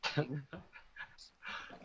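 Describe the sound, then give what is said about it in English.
Heavy breathing right into the microphone, a few loud, panting huffs mixed with voiced, throaty sounds, ending in a long breathy exhale. “Yes, does my breathing bother you”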